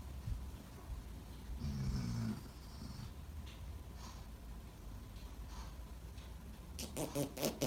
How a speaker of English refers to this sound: What the hell? That's a fart.